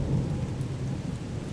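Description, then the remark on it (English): Steady, dense rainfall with a deep rolling rumble of thunder underneath on a cold November night in northern Ohio, heavy and continuous throughout the short stretch, with no voices present. “So on that rainy, cold November night in northern Ohio”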